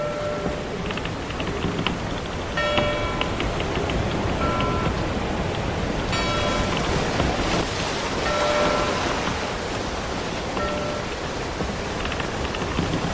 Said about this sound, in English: That bell means that the Argosy has pulled into port, and it comes bearing mail for us.